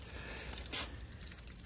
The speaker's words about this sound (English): Here it is. Not a very big package at that. Here, I'll open it up.